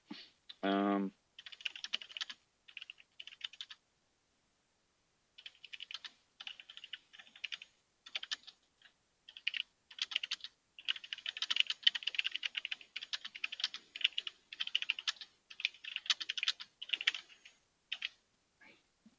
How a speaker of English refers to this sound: You guys can feel free to talk while I'm typing.